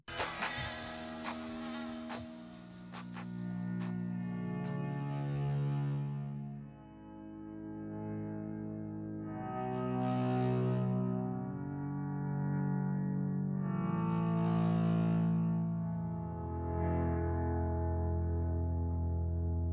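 A slow, atmospheric rock intro with swelling, effects-laden guitar tones that rise and fade in waves over a sustained low drone, building steadily with no voices.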